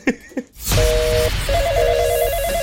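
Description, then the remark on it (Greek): After two short blips and a brief pause, a telephone starts ringing with a steady electronic two-tone warble. It continues loud over a faint background hiss. “Συγγνώμη, 5.30 ώρα δεν πρέπει να παίρνουν τηλέφωνο για τα μωρά? Ναι. Γιατί παίρνουν από τώρα?”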